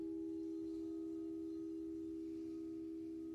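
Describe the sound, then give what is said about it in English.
A gong rings on in a long, steady hum, a low sustained tone with faint higher overtones that holds evenly without fading. It is fairly quiet, and no one speaks. “What sounds are you hearing? My voice, the gong, perhaps something outside.”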